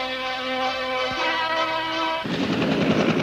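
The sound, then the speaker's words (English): A helicopter carrying Pope John Paul II idles after landing in San Francisco in 1987, its turbine whining steadily over a rapid thudding rotor chop, then a broad rushing roar swells up for the last second. “The helicopter has landed.”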